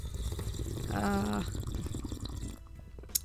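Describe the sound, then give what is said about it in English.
A person slurps morning coffee: one drawn-out, wet sucking slurp with a thin whistling tone, surrounded by soft liquid gurgles and sips, then a brief quiet pause. “One of them of which is to slurp coffee.”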